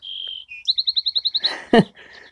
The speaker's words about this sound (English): That's the Wren. Such a pretty song.